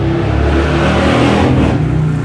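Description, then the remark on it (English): A car engine revs loudly and steadily, its deep rumbling tone rising and holding with a harmonic whine, filling the whole moment without any talking. “Pretty sound engine there.”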